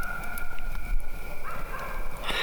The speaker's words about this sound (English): Whoa, what was that? Coyotes, maybe. I hope you all heard that. Anyway. Kind of freaked me out.